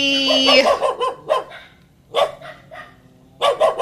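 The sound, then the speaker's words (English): A little dog, a puppy named Marley, barks in several sharp, high-pitched bursts, fairly loud, with short pauses between clusters of yaps, during a family birthday get-together. “they brought their puppy. They have a little dog named Marley.”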